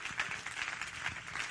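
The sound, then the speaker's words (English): A crowd claps their hands together in praise, a steady, dense burst of applause with many overlapping claps at moderate volume for a moment. “Come on, clap your hands and let's give praise to him.”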